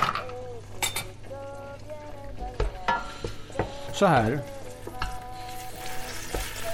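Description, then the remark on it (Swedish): Peas thaw and sizzle steadily in a pot with a little olive oil while a wooden spoon stirs and scrapes with occasional light knocks; a voice speaks briefly over the cooking sounds. “Så att de får gå i kastrullen med lite olivolja.”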